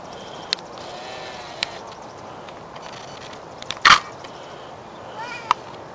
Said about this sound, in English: Yeah, you hear it twice. It sounds like maybe a mommy goat or a mommy, like, sheep calling to its baby, and then you hear the baby respond.